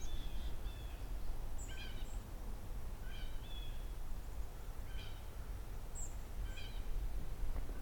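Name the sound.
white-throated sparrows peeping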